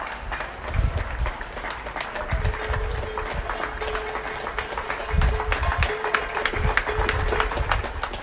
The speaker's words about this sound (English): healthcare workers by clapping and banging their pots